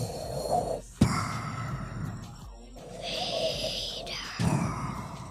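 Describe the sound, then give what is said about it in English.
A person imitates Darth Vader's heavy, rasping breathing, with slow, drawn-out inhales and exhales repeating in a steady rhythm and brief pauses between breaths. “It's another guy with a weird, deep voice. And a breathing problem. He's got asthma.”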